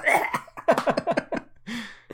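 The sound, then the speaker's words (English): Someone fakes a coughing fit: a rapid string of harsh, breathy coughs and throaty hacks, ending with a drawn-out raspy gasp. “Have a coughing fit off.”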